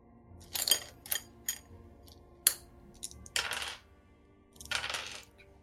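Small hard objects clatter and rattle in a series of quick bursts as dice, including d8s, are scooped up and rolled onto a table for a spell's cold damage in a tabletop game. The sound is fairly crisp, and no one speaks.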